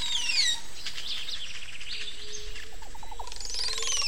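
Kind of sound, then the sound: bird, montezuma oropendola call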